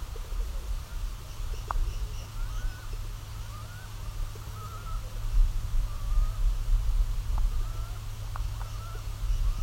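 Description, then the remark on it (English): Low, rumbling pigeon coos fill the foreground steadily, while faint, thin chirps from an indigo bunting, about 20 times farther away than the pigeons, drift in and out above them. “What happens here is normally any other bird like that indigo bunting who's like 20 times further away than these pigeons are perfectly audible.”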